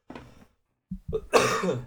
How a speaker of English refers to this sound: Nice cough, bud. Excellent form.